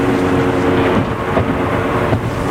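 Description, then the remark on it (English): A steady, loud rumble of a car moving in the far left lane of a packed freeway flowing at a good pace without traffic jams in the early afternoon, continuous low road and engine noise with no breaks and no one speaking. “I'm trusting in a packed up freeway. Like the pace of the freeway is going pretty good.”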